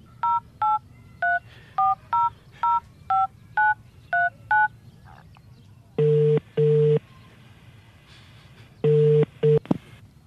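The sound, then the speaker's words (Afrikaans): A phone number being dialed to call Linda: about eleven short, clear keypad beeps of varying pitch in a quick, slightly uneven sequence, followed by a few longer, buzzier tones with pauses between them. “Bel vir Linda.”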